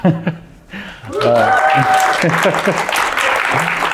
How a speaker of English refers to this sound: All right, welcome to Super Data Science live on stage at the Open Data Science Conference West, ODSC West in San Francisco. Let's get a crowd cheer.